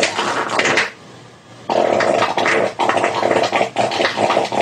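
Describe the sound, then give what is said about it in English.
A run of raspy fart sounds, loud: one burst, a brief lull, then a long sputtering stretch broken by short gaps, its tone shifting as it goes. “And you can also, I was saying, if you're seated and you stand as you're farting, that'll also move everything around. The pitch will change.”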